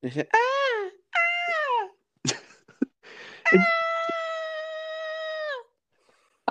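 A woman lets out three high-pitched screams, two shorter wavering ones followed by a long, steady shriek lasting about two seconds, with brief clattering noises between them.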